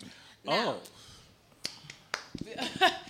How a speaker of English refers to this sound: Why is she clapping?